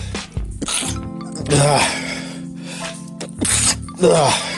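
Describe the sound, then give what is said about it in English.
Two loud sneezes from a person who is starting to get sick, each a sharp voiced burst with a breathy rush, separated by a couple of seconds, with smaller breathy sounds and a faint steady hum in between. “Just listen to me sneeze for the last 2 minutes.”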